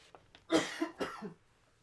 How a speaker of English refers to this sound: Well, he has his coughing fit.